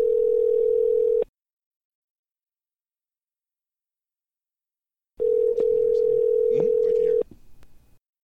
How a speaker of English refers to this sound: He will pick up this phone. Let's do it. Okay, I want to see it. All right. Let's call right now. Let's dial it up. Right now. Let's go.